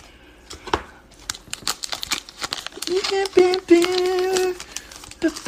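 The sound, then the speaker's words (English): Quick, crisp papery clicks and flicks of trading cards being shuffled, in uneven bursts, with a steady hummed tone joining partway through before more scattered card sounds. “No, I was doing the shuffle thing first.”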